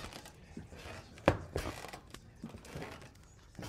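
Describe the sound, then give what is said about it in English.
A door being opened: a sharp wooden clunk followed quickly by a second softer knock, set against faint rustling and low background noise, with no talking. “I'm opening the door?”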